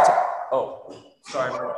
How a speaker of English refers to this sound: My dogs are freaking out a little bit. All good.